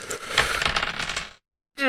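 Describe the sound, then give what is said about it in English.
Two six-sided dice, rolled in a tabletop role-playing game, clatter and tumble across a hard tabletop for just over a second in a busy rattling burst, then settle into silence before a voice starts at the very end. “Yep, 2d6 plus strength again.”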